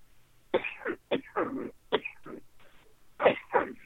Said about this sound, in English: is that a dry cough? It's a dry cough. It's a scratchy throat. Not running a temperature.